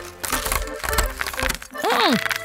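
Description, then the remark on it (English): Uncooked spaghetti noodles are crunched, giving a dense run of brittle snaps and crackles for nearly two seconds, then a short voiced exclamation with a rising and falling pitch. “Crunchy!”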